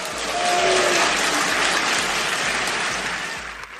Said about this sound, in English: They are booing her.